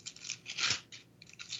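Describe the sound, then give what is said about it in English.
Pages of a wrinkly, worn paper Bible with missing portions rustling and flipping in a few quick, crisp bursts, a dry hissy crackle with one louder swish in the middle, no voices. “Oh, paper, huh? That's the one. An actual paper Bible.”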